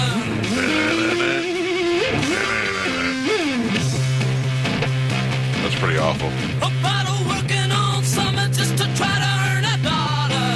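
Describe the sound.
A loud, heavily distorted late-1960s rock song plays continuously with thick, fuzzy guitar tones and a raw, muddy sound, while a voice briefly comments over the music.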